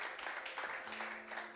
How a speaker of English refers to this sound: Welcome, everyone. Can we clap our hands for our great God? God is so good.